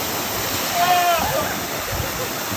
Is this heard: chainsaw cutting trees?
no